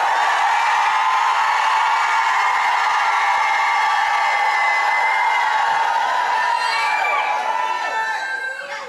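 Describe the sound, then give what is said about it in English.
A large audience of apostolic women shouting together during a sermon at the preacher's call, loud and sustained, a dense wall of high voices and cheers filling the room for the whole stretch, with no single speaker standing out. “Apostolic women, if you believe that the man of God is telling you the word of God, shout like you never shouted in your life.”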